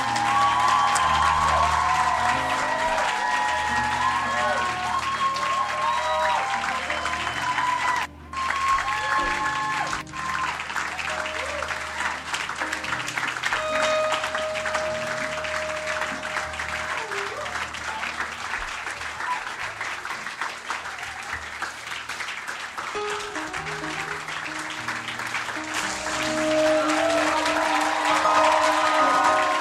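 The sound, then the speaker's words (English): A crowd claps steadily for about half a minute as a group walks off with a lady pastor, dense and sustained applause from many people, with a brief pause early on and some faint voices mixed beneath. “Clap for them as they go.”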